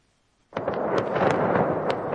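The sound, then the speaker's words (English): Gunfire erupts suddenly after a moment of silence in the Ukrainian town of Irpin, on the outskirts of Kyiv, during fighting against Russia's invasion; a few sharp cracks ring out over a loud, continuous rumbling din, with no voices heard. “Gunfire in the Ukrainian town of Irpin.”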